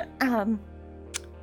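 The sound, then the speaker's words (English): A voice imitates a small, interrupting cough: a short voiced 'ahem'-like sound that falls in pitch, then a faint, brief breathy burst, fairly quiet. “like, kind of, like, does a little interrupting cough.”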